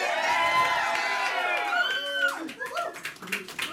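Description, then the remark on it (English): An audience applauds Bernie Sanders after his speech, loud clapping mixed with cheering and whoops, then the noise breaks up into scattered claps and overlapping crowd voices. “And then right afterward, the same people that he just destroyed, they turn around and they applaud him.”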